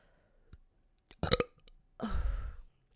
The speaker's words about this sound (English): I have to keep burping. Oh my God, hold on.